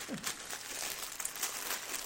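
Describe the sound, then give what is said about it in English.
Steady crinkling of the silver plastic wrapper of Mac Weldon underwear being opened, with bright crackly bursts and rustles running continuously for a couple of seconds, no voices. “I'll open the silver one first. Warning, plastic bags can be dangerous.”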